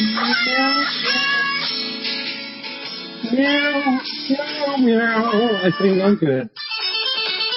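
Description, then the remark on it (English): Pitched cat meows from a Christmas album strung together into a bouncy holiday melody, each meow sliding up and down like a sung note over a steady musical backing, loud throughout. “I'm dying to know what … are. I know this is making for a great... Oh, they have a Christmas album.”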